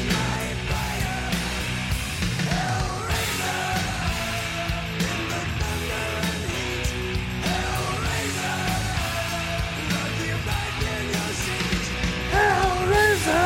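A heavy metal rock song plays loudly and steadily, a dense wall of distorted guitars and pounding drums with gritty, shouted-sounding vocals riding on top.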